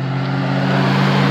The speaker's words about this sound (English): You see a lot of traffic out here, but this is like the bypass around campus.